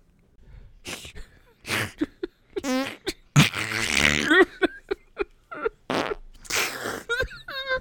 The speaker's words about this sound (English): Good Lord, who farted in here?